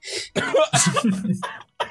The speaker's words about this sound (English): I'm keeping it in right now. I got like a crazy cough right now. I decided to give it to you because I'm dying over here.